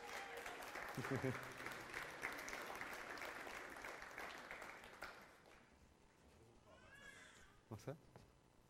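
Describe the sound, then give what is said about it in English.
An audience claps steadily for about five seconds for people coming up to the microphone, a dense crackling applause that then dies away, followed by a few brief spoken words and murmurs. “While it takes some time again, why don't you clap them? Because that's just nice.”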